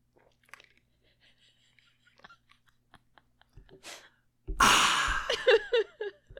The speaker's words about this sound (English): Sorry, go ahead and take a sip of my drink.